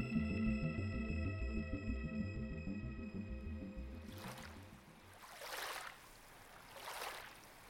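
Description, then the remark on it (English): A steady electronic hum with ringing tones fades out, then two heavy sloshing swishes follow a second or so apart as legs push slowly through knee-deep water, fairly loud. “Ah, oh, my feet are wet. This water is going right up to my knees.”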